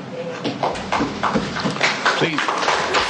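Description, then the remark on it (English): Applause breaks out in a courtroom: a burst of uneven, overlapping claps of moderate loudness, mixed with murmuring voices, continuing steadily for a few seconds. “Please refrain from applauding. It's inappropriate in a court proceeding.”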